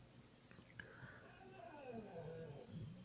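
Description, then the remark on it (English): A dog named Simba makes a drawn-out, wavering vocal noise that slides gradually downward in pitch, fairly quiet, over soft rustling of a blanket and breathy background sounds. “And that's my dog.”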